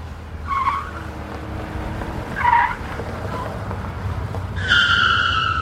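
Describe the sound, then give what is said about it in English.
A car driven recklessly tears along with a steady engine rumble while its tires squeal in three sharp, high-pitched bursts, the last one longest and loudest, with no voices present. “Why do you drive like you're trying to run people over?”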